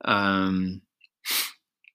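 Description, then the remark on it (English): A short, cut-off yawn: a voiced, drawn-out groan sliding downward in pitch for under a second, followed by a brief breathy exhale and faint mouth clicks. “That was only like a 50% of a yawn.”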